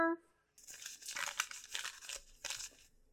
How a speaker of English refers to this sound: I don't know why you put all the awards in like crumpled up pieces of paper